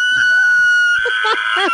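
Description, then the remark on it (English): A voice imitates a high-pitched, elk-like whistle: a steady piercing tone for about a second, then several quick squealing swoops that rise and fall in pitch, loud and clear with no talking. “And when I say it's clear as a whistle, there's a very high-pitched whistling sound that... It's very clear. Would very you say clear. It sounds a bit like... Sounds like an elk.”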